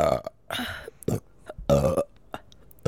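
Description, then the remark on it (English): Several loud burps come in quick succession, each a short throaty rumble with bursts of breath between them, and nobody speaks. “I'm sorry, I have a burp.”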